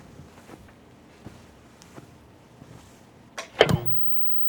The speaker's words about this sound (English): Next, we hear footsteps followed by the sound of a television being turned on.